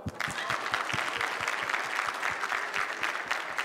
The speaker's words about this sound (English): The Greek word for go, get your hands ready to clap.